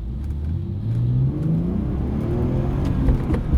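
A petrol car engine runs loudly and revs, its low rumbling pitch climbing in a couple of surges before settling into a steady, throaty idle. No voices.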